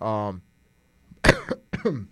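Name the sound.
cough into the microphone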